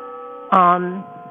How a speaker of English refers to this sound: My doorbell just rang again. I'm terribly, terribly sorry.